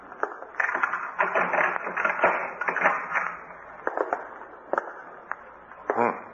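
A door is unlocked and opened: a run of sharp metallic clicks and rattles from the lock and handle, uneven in rhythm, with a scraping creak near the end.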